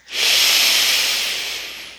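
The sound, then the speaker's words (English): A single long, deep lower-belly breath, a steady airy rush that swells quickly and slowly tapers off over about two seconds, with no talking. “Lower belly breathing. We've already started.”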